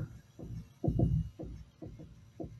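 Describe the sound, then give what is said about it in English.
A deep, muffled video game heartbeat sound effect thumps in a steady rhythm, with a handful of soft low beats, some landing in close lub-dub pairs, over a faint background hum and no talking. It guides the player toward a luminous door to revive. “Follow the heartbeats. It seems like it's coming from this way.”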